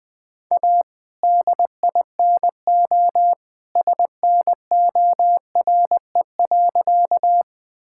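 Morse code at around 20 words per minute: a single steady, mid-pitched beep keyed rapidly into short dots and longer dashes, grouped with brief pauses, loud and clean with no voices.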